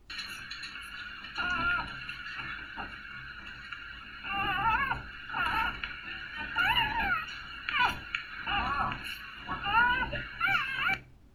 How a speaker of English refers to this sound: So I'm a vet tech, and one of my favorite sounds is after puppies are born via C-section, them crying, I want to hear that noise. So this is a video where you'll hear a little puppy suckling on its mom and making the cutest noises ever.